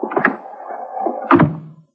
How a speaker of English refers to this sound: Get in and close the door.